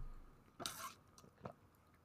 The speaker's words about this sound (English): Hold on, let me drink some water for you guys.